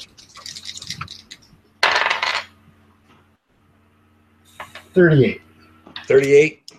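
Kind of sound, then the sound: dice rolling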